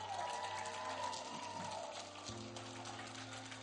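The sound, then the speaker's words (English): A church audience claps steadily for a few seconds in one more round of applause for its youth, a dense crackling wash of applause over sustained low keyboard or organ tones that shift to a new chord partway through. “Just if we could give them one more round of applause.”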